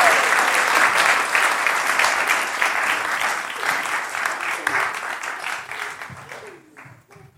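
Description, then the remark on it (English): A crowd claps steadily in dense, sustained applause that stays strong for several seconds, then thins and fades toward the end. “You can give them a round of applause.”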